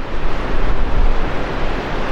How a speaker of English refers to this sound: That's the Cedar River rushing out from a century-old dam in the Washington Cascades.